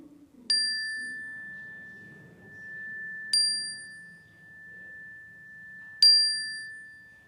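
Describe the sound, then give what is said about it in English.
A bright, clear chime is struck three times at slow, even intervals while names of people and places are spoken aloud, each ring lingering and gradually fading before the next, with only a faint room hum underneath. “I invite you to call to mind the names of the people and places you carry in your hearts today and speak them aloud as the chime rings so that we can hold them with you.”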